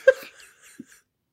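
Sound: coughing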